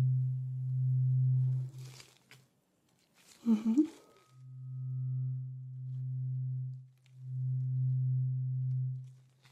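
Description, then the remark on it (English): A steady, low humming tone plays during a hearing test, cuts out, then returns in long sustained stretches separated by short silences, with a brief rustling noise during one pause. “Thank you for telling me when the humming stops.”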